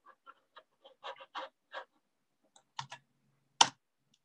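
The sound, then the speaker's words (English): Quick, irregular clicks of keys being tapped on a computer keyboard while looking up how many people are in the US, a handful of light taps followed by a couple of firmer, louder strokes near the end, with no talking. “If you can't hear that, I'm typing it.”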